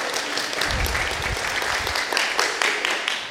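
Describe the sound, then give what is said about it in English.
A crowd applauds steadily for a few seconds for a woman who helped with a demonstration, many hands clapping together in a dense, even wash of sound that stays fairly loud throughout, with no speech over it. “You can give her a round of applause for helping.”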